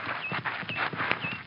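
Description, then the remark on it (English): A horse's hooves clip-clop in a steady, even rhythm as it approaches, about three or four beats per second at moderate loudness, with no one talking over them. “Let the horse get a little bit past so he won't rear up.”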